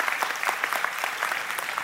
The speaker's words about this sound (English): And so, yeah, you can clap for that if you know.